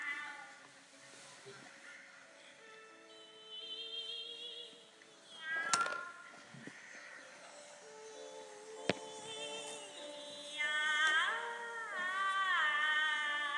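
Several cats meow together in a overlapping chorus, some calls drawn out and tuneful, others rising and falling in quick glides, growing busier and louder toward the end.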